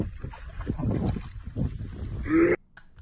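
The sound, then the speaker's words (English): A dog vomiting: a string of wet, low heaving retches in uneven bursts, fairly loud, with a brief rising squeal near the end before the sound cuts off abruptly. “It's a fucking dog vomiting.”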